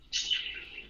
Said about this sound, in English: I'm down here with the bird.